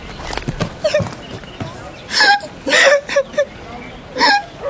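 A woman sobs in halting, gasping bursts that grow louder and more convulsive partway through, her crying uneven with short breaks between sobs as she tries to smile during an emotional farewell on leaving the home.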